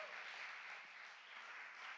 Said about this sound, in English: Why don't we give God a great round of applause?